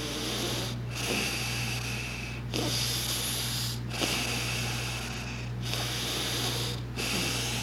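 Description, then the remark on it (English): Deep, steady breathing exercise flowing in and out with no pause between inhale and exhale, each breath a loud airy rush, about five cycles in a row, over a faint low hum. “So let's just do this for a minute and just keep doing that and see if you can both deepen the breaths and make them a little bit more, just automatic, so there's no pause between the inhale and the exhale.”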